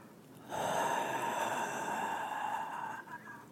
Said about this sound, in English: Let's start by just breathing all of the air that's in our body. Let's just push it all out.